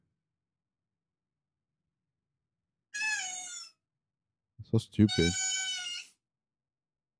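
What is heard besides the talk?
cat meowing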